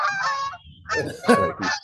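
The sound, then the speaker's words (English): A flock of geese honk loudly, a quick run of harsh, nasal calls overlapping one another in bursts, with no talking. “Are you getting attacked by a flock of geese?”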